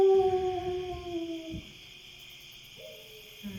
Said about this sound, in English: Through the night, you hear a distant howling sound.